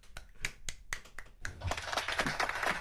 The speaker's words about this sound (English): As you guys can tell, we had a new sound effect. Why don't you use your hands to clap?